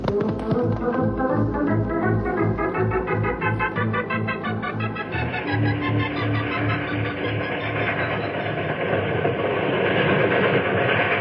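A steam train rolls steadily along old tracks as it winds around and down a mountain, its rhythmic chugging and wheel clatter loud, with hissing steam throughout and no voices.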